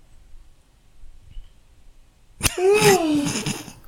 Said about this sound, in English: I didn't yawn once before the podcast started. Why did it always happens? It's like we take turns.